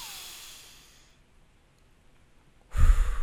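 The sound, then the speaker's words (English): A person demonstrates slow, deep breathing to stay calm: a long, airy breath out fades slowly, followed by a quiet pause, then another deep breath in starts loudly. No one speaks. “But if you're feeling a bit worked up and you're feeling a bit stressed about things, then I would suggest to do deep breathing between the shots and just nice deep breaths in.”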